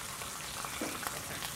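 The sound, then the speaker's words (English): Fish sizzles in a hot pan as tamari is dropped over it before flipping, a steady crackling hiss with small pops throughout, moderately loud, with no voices. “Before you flip it, tamari, if you just kind of drop it over, and what's going to happen is you're going to get a little sizzle.”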